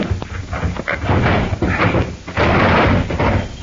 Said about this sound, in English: Now, let's see. Locked. Hand me that poker from the fireplace. All right. Thanks. We'll pry the drawer open.